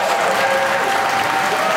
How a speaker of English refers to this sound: Of course, you hear the applause building here at the New York Stock Exchange on this holiday.